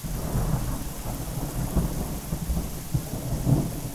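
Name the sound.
thunderstorm with heavy rain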